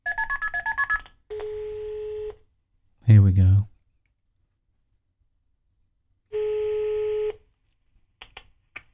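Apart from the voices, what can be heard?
telephone number being dialed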